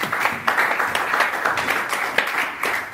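Steady audience applause welcoming a speaker, many hands clapping in a dense, continuous patter with occasional sharper claps standing out, moderately loud throughout.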